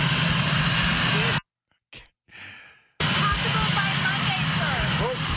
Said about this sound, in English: Hey, Marine Corps, can you get a louder helicopter next time on that one?